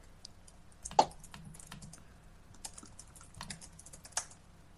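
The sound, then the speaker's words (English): Rapid, irregular clicking of keys on a computer keyboard, with one sharper louder keystroke near the start and steady tapping continuing throughout, no voices. “People typing things.”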